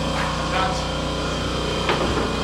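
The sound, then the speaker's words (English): An air compressor in the corner runs steadily, a droning motor hum with low tonal buzzing and a hissy top end, holding an even level throughout with a few faint knocks and scrapes over it. “Yeah, there's a compressor in the corner.”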